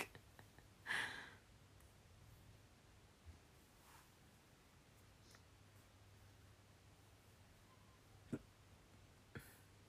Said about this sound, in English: Oh, hiccup. Apologies.